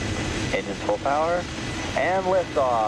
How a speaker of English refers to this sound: Engine full power, and liftoff. The U.S. military launched its secretive X-37B robot space plane on Thursday. The plane blasted off from Cape Canaveral atop a SpaceX Falcon Heavy rocket